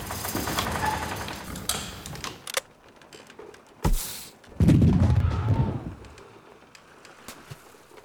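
A single sharp cannon shot, fired at a bird, cracks out, followed by a loud, low rumbling boom that slowly fades. Earlier there is a busy outdoor wash with what may be birds cooing.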